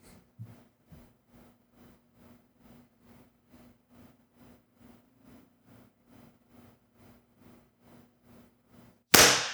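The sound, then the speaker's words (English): A faint, steady ticking pulse runs for several seconds, then a group claps once in unison on cue at the very end, producing a single loud, sharp burst with no voices. “Great work on the clap.”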